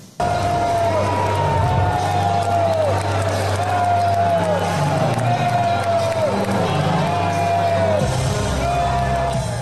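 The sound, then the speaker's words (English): A large crowd boos Texas Senator John Cornyn's Friday night speech loudly and without pause, a dense roar of voices with drawn-out, wavering low tones swelling again about every second. “The Texas senator's Friday night speech to the crowd was met with boos.”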